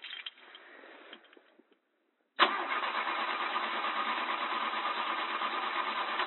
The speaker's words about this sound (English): Ah, fuck, car's not starting. Hold on, one tick,